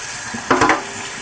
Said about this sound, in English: put that in the sink, wash some of the oil off of my hands, and we will get to a stirring.